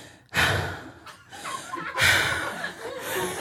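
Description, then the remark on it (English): A voice imitates heavy breathing: loud, breathy huffs in two or three long drawn-out bursts, with no words spoken. “And while we're making out, he just pulls away, and then he starts breathing heavily like this.”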